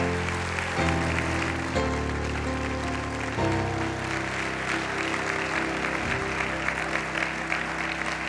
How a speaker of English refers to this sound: Now give him a good hand clap. Give him a hand clap of praise right now. Hallelujah.